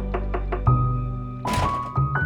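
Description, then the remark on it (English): Three heavy thumps as a 6-year-old neighbor pounds on a door in quick, even succession, then give way to sustained droning tones and a brief noisy rush. “Just before a fight could break out between the siblings, Elizabeth heard a pounding at the door.”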